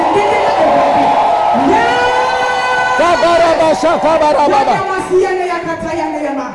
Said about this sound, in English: It is not undignifying to shout in prayer. Can I have an amen? Amen. So he said, look at them, they are clapping their hands. Look at them, they are shouting.